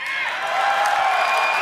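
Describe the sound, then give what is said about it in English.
A large crowd, many of them World of Warcraft Classic fans, cheers and whoops in a steady, loud roar of overlapping voices, with scattered clapping mixed in throughout the short burst. “A lot of classic fans in the crowd.”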